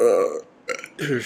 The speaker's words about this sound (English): You really need to stop burping every episode.